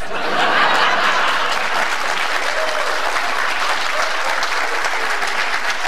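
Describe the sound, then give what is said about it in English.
A large crowd claps steadily, a dense, sustained wash of applause at even loudness for about six seconds, with no speech over it. “Like, what are they clapping at?”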